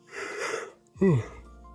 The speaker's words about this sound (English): Big yawn. Okay, I even bore myself.